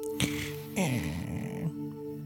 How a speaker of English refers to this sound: So why don't we just start with a little breathing to put us in that good place where we can explore this. So we're going to breathe in now.